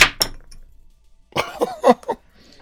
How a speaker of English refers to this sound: I dropped my hammer.